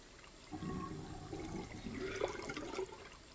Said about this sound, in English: Put your hands in the water and wash off the soap.